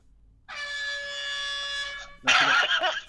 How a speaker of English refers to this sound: That's even though you still had 8 seconds left, I've got to use the air horn.